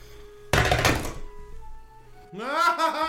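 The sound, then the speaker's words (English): Dice rolled for a reflex save hit a table with a short, loud clattering thunk lasting about half a second, then a quiet pause before someone's voice rises in an excited exclamation. “Roll a reflex save.”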